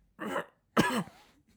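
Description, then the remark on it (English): A voice imitates two muffled, stifled coughs into a sleeve, a short one followed by a slightly longer one with a throaty tail, moderately loud, with no other talking. “And then you're coughing into your slip, into your sleeve, and you'd see all the guys trying to do...”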